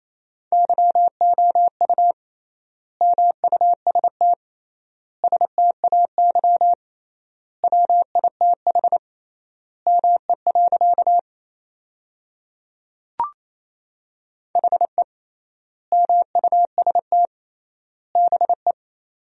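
Morse code at 28 words per minute, sending sentences built from the top 500 words with triple word spacing: a steady mid-pitched tone keyed in rapid dots and dashes, sent in short bursts separated by brief gaps, with one faint click partway through and no voices.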